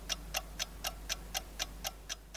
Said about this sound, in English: But first, let's start the timer.